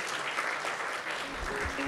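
A crowd claps steadily, a dense, continuous patter of many hands filling the whole moment at fairly close range, with no voices standing out.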